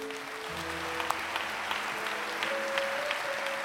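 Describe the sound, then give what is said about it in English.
An audience claps its hands in steady, dense applause that holds at an even loudness throughout, with a few sustained low musical tones underneath. “Yes, let's clap our hands.”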